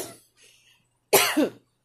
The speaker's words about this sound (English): The reason I'm coughing is that I really don't have a cold, is that my throat keeps getting really, really dry.